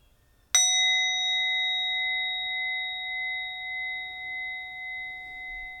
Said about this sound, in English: And as we end this meditation, I invite you to take 3 deep breaths as I invite the bell.